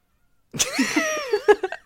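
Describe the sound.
A human voice imitates a cat's meow: one drawn-out, whiny cry with a wavering pitch that ends in a few short, choppy bursts. It's fairly loud and heard alone, after a brief silence.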